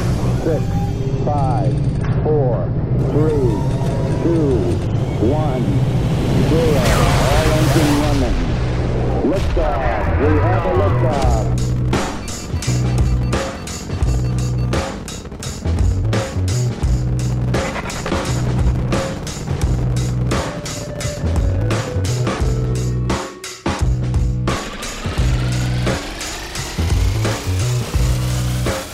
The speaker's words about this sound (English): 5, 4, 3, 2, 1, 0, all engine running. Lift off. We have a lift off.